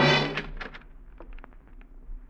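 A door being unlocked and opened: a dull thump, then a run of short, sharp clicks and rattles from the lock and handle, fairly quiet with no voices.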